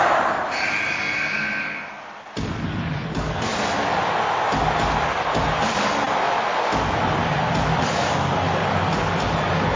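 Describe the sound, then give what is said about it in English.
A large crowd at a wrestling match roars and cheers loudly and continuously, a dense wall of noise that swells after a brief dip about two seconds in. “But Bryan is able to skim the cat back into a gasp and cheer from the crowd.”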